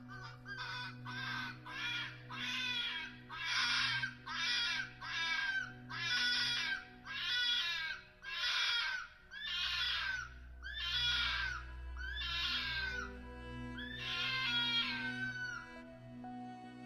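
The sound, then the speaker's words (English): A fox screams again and again: about a dozen harsh, raspy shrieks in a steady rhythm, loud, over a low constant hum in the background. “suggesting that the noise might have come from an animal, notably a fox, which can make a loud cry that would sound to many like a screaming human woman.”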